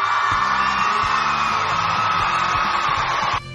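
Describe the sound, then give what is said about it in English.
A loud, steady roar of crowd applause and cheering, with whoops and yells mixed into the dense clapping noise, holding at full strength for over three seconds before cutting off abruptly. “Come on, give me a round of applause.”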